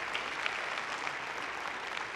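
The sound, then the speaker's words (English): An audience gives the Lord a clap offering, clapping together in a steady, dense wash of applause, many hands blending into a continuous bright patter with small irregular peaks, holding at an even level throughout. “Let's give the Lord a clap offering, would you?”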